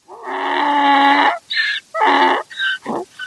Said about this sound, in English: You know what that is? That's a donkey.